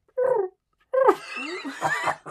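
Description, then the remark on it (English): A person imitates pigeon cooing: a short throaty warble, a brief pause, then a longer burbling run of rising and falling coos, fairly loud with no other talk. “I mean, I could do a really good pigeon sound.”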